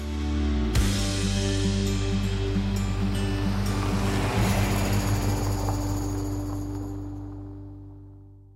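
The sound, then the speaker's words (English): A steady wash of ocean surf at Mooloolaba beach on the Sunshine Coast on a beautiful morning fills the scene after an abrupt start, with a low droning hum running underneath before everything gradually fades away. “We're here at Mooloolaba. I'm with the Mooloolaba Beach Bums. Beautiful morning.”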